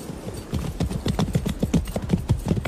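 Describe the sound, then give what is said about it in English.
A bolted horse's hooves clip-clop in a steady, quick rhythm as it nearly rides a man down, a dozen or so hollow knocks with low thuds underneath, fairly loud and with no voices over them. “First you summons me, and now you're trying to ride me down.”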